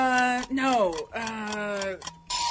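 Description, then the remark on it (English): A quiz countdown timer for a trivia question about which fictional island Moana is set on ticks in a steady rhythm beneath a sustained, gliding tonal melody with rich harmonics, briefly dropping out twice before resuming. “Because of the timer! Yeah, that's definitely a timer one”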